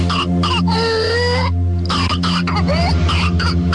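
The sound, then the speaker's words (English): A child's whooping cough (pertussis) fit: repeated harsh, wet coughs in quick bursts with strained, high-pitched breaths between them, loud, over a steady low background hum. “It's pertussis, whooping cough.”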